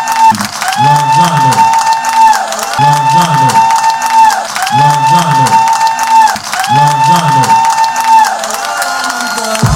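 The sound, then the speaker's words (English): An audience at a show claps and cheers steadily and loudly to welcome a performer to the stage, a dense wash of applause layered over a repeating musical loop with a bright melodic line that cycles every couple of seconds. “Start clapping your hands up right now.”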